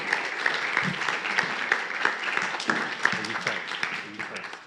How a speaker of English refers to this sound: So why don't we give Val and Rosie a round of applause.